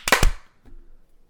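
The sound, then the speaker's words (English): Two sharp, loud hand claps land in quick succession, slightly out of step like several people clapping at once on a count of 3, 2, 1 to sync a show recording, followed by near silence with a faint low murmur. “Everybody clap sync in 3, 2, 1.”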